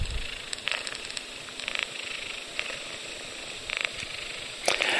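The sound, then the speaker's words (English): A male Bengal cat named Rebus purrs steadily, a soft continuous rumbling with faint breathy rustles and a few brief clicks, with no talking. “That's Rebus, our male Bengal cat.”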